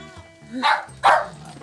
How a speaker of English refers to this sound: But he's blocking my path to the door, slobbering all over me, and my clothes, and my bag. We've started a tug of war, and I'm losing. Hey, puppy. Nope, no, don't chew on the cord. Don't chew on the cord.